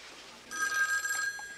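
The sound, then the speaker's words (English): A telephone bell starts ringing abruptly about a third of the way in, a bright, rapid metallic trill that carries on steadily at moderate volume through the end. “Yeah, I'll get it. Hello?”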